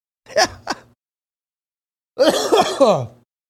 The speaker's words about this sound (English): Oh, I still got the cough.